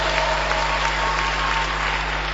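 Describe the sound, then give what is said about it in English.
Steady audience applause for bishops and reverends being introduced fills the whole clip, a dense wash of many hands clapping at an even, fairly loud level, with a low steady hum underneath and no voices. “And I thought you'd be clapping for all these next to.”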